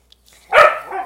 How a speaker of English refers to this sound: So, I'm still hearing my dogs barking in the background.